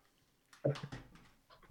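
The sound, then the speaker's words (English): A dog, Obi, whimpers and whines in short, breathy bursts, moderately loud, with a couple of quick vocal pulses and no speech, as it tries to get out of a room. “My dog is trying to get out of this room.”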